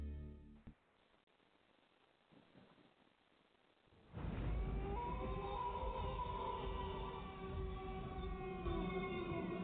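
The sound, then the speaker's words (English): A quiet, murky stretch gives way abruptly to loud, sustained ghostly wailing of lost souls in a Halloween promo, layered eerie tones rising and falling like a chorus of moaning spirits, continuing steadily to the end with no talking. “That's the sound of all the lost souls who didn't play Halloween head games.”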